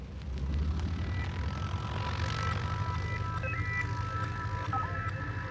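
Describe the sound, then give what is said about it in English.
A loud, steady airplane engine drones as the aircraft flies overhead, a deep rumbling roar with a whining tone that holds throughout, with no voices. “So let's fasten our seatbelts, start with a couple definitions, and learn how these fascinating and cool machines fly.”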